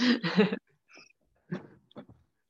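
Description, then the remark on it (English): A dog named Lexi snoring: a loud, rough snort opens, then a few quieter, wheezy snuffling breaths follow at irregular intervals with short pauses between. “As I've got a snoring Lexi over here. Oh. Literally snoring away.”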